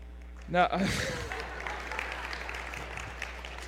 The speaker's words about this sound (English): I had a pause for applause written in there, so you can go ahead and...